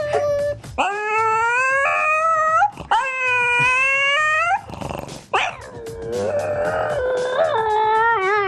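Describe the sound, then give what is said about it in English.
A French Bulldog howls and whimpers in long, drawn-out wails that rise and waver in pitch, several in a row with brief breaks between them. No one speaks. “I'm a big fan of these French Bulldogs.”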